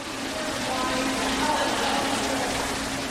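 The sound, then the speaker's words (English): A steady, even rush of running water fills the lobby of the five-star Wild Horse Pass Resort on the Gila River Indian Reservation, with a faint murmur of visitors' voices blending into the continuous hiss. “Visitors enjoy the lobby in the five-star Wild Horse Pass Resort on the Gila River Indian Reservation.”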